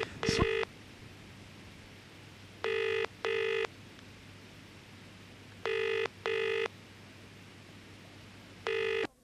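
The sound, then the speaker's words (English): A sharp click as a telephone number in Brighton is dialed, then a telephone ringing tone sounding in repeated double bursts with pauses between, clear and steady over a faint low hum, with no one speaking. “Right, let's phone that number.”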